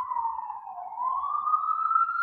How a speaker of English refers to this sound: We're just going to let the siren play.